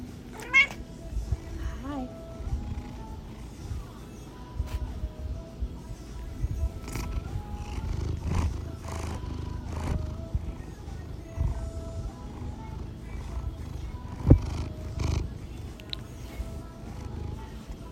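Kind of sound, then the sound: animal, cat meowing and purring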